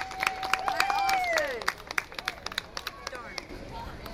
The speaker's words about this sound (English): Oh, that was beautiful. Give him a round of applause.